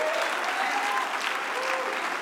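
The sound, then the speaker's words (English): An audience claps hands in a steady, dense wash of applause, with faint voices and a thin tone drifting underneath the continuous clapping. “You ought to clap your hands and make somebody need to shout a little.”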